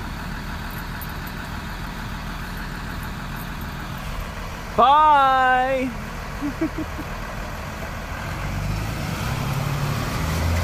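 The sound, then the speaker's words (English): A large school bus engine idles with a steady low rumble outdoors, then revs louder as it pulls away with kids aboard. A voice calls out briefly partway through. “oh, here's your bus.”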